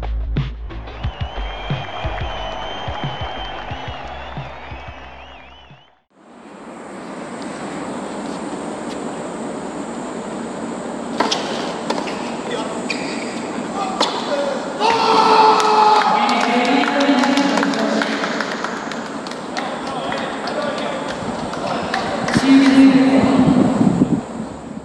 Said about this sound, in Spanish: Hola desde Tokio. Esto que acaban de escuchar es el grito del número uno del tenis mundial, Novak Djokovic. Y tiene razones para gritar este grito.